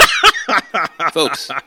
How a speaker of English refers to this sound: You sound a little thirsty. You're clearing your throat. I am.